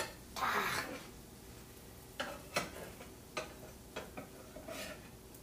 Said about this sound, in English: If I'm sounding like I'm struggling, it's because I'm trying to flip these fucking pancakes without.